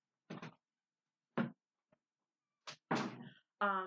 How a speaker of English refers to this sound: Please open the door for her. She's gonna start whining.